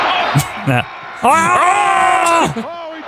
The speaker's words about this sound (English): Why did he? That was a weird yell. For nothing. For literally just like Hogan got up.